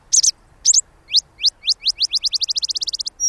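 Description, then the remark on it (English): A Botteri's sparrow sings clearly in the desert during the summer monsoon rains: a few sputtering, scratchy notes, then a rapid series of rising whistled chips that speeds into a trill, with no voices. “Bonnerized sparrows add their distinctive sputters and trills.”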